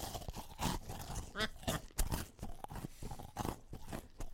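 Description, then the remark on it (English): Loud crunching and chewing of a hard chocolate Easter egg shell, with repeated crackly bites and mouth sounds in an irregular rhythm over a few seconds, no talking. “Certainly is crunchy.”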